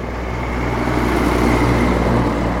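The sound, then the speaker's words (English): A vehicle drives along a smooth section of road on the way to the main city, producing a steady, even rumble of engine and tyre noise with a deep low hum that holds at a constant moderate level throughout. “As we left the house this morning at 4:40 a.m., we are traveling over a smooth section of road on our way to the main city.”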